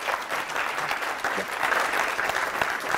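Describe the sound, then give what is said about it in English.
Steady audience applause, a dense wash of many hands clapping at once, sustained and fairly loud throughout with no voices rising above it. “They can only applaud a statement for inequality.”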